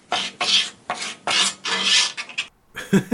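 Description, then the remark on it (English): Scratching at a door: a series of harsh, rasping strokes in quick irregular rhythm, fairly loud and without any voices, then a brief pause and a final jumble of scraping. “Sponsor scratching at the door.”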